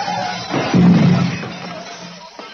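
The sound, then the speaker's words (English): A car driving on a mountain pass smashes through a glass mirror with a sudden loud crash, followed by a longer rush of shattering and rumbling noise that slowly fades. No one speaks. “See the glass? We drove through... A mirror.”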